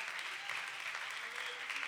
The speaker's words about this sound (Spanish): Denle un fuerte aplauso a mi rey Jesucristo esta tarde.